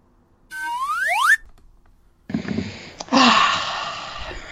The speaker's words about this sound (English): Time for a slide whistle.